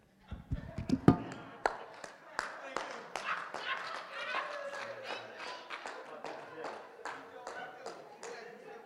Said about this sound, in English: Clap to yourself. Y'all don't have to clap.